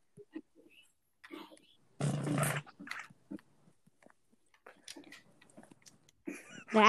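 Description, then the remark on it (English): A cat makes harsh noises: one loud rasping burst, scattered quieter snuffly sounds, then a rising, strained yowl at the end. “That's cat.”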